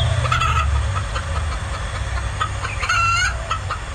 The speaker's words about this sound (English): Some guy holding a chicken.